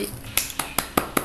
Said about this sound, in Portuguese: tá batendo palmas, gente.